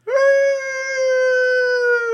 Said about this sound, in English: We just have a brief cut over to someone walking in the streets of Opal and they just hear a distant howl.